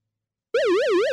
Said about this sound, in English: That's the alarm sound? I need to find a better alarm sound.